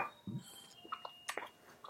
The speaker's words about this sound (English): still munching on food while doing a podcast.